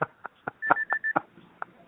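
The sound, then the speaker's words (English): A kitchen timer beeps three times in quick succession, short steady high-pitched tones, mixed in among several sharp clicks and knocks. “Is that my timer? Let me see. Oh, it's the timer.”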